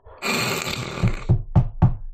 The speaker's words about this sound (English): I'm the one who knocks four times.